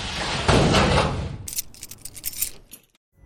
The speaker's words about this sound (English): Shut the door. Don't forget to lock it.